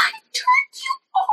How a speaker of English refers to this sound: My phone betrayed me. I turned it off. I swear I did. Oh, wait. It was a 7 o'clock alarm from this morning.